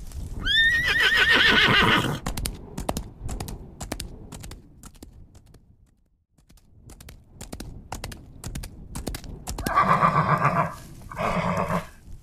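A horse whinnies loudly with a shaky, high-pitched cry, followed by a steady series of sharp hoof clip-clops, then two more whinnies near the end. No one speaks.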